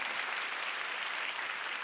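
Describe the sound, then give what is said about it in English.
An audience claps together for the Lord in a dense, steady burst of applause, many hands blending into a bright, continuous patter that holds level throughout with no voices standing out. “Won't you give the Lord a big hand clap?”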